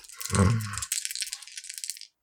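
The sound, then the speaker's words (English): Dice clatter and rattle across a hard surface, a low thump at the start followed by a quick run of bright, clicking taps that scatter and settle, with no one speaking. “We'll see what you roll. May I see your dice, please, ma'am?”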